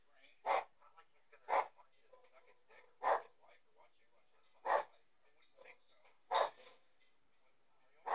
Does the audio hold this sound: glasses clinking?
no